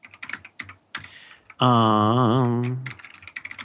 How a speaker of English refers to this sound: I gotta get a quieter keyboard. I wish I could get a keyboard this good that wasn't loud.